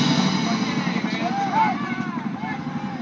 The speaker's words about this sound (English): What's he pointing at? Helicopter. Hey, it's coming.